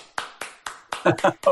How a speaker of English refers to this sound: So that being said, all around, because this is my favorite tech in the industry, I'm going to give you a golf clap, man.